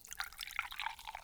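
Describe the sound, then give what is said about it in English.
A carbonated drink with hemp seed extract is poured into a glass, a short liquid trickle with bright splashy gurgles, fairly quiet, with no voices over it. “Give it a pour.”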